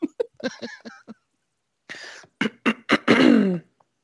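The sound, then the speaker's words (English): Loud throat clearing: a short run of rough, raspy bursts that build into one long, gravelly clear, with a few brief voiced grunts before it and no speech. “I really want to clear my throat again.”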